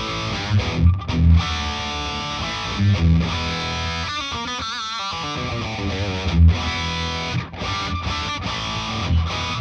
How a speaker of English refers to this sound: So, I mean, like, if you hear like this distortion,